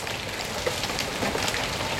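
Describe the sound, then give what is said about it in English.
A late-afternoon-season hailstorm on a Sunday evening pelts a garden in a steady, dense clatter, with countless small impacts blending into a loud, continuous hiss and a few sharper hits standing out. No voices are heard. “We're in late afternoon hailstorm season, so do whatever you need to do to protect your tomatoes from an assault like this one I recorded on Sunday evening.”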